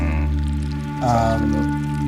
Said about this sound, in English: Another half-formed portal to the far realm intermittently opens and disgorges these horrible slurping noises.